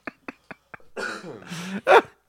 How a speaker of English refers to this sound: When he gets the dispatcher on the phone, he burps.